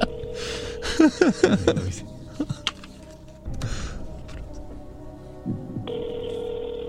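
A phone dials a quick series of button tones to call a friend. A steady tone and a ringing signal follow over a soft background hum. No one talks.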